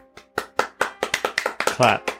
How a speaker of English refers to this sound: And let's give her a hand